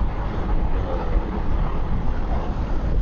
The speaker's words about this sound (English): As usual, motoring in my motor car. It's early morning time. Another hour plus commute to another glass shop.